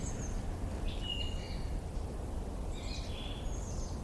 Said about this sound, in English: I'm getting closer to the song thrush. That's not a song thrush, that's a blue tit.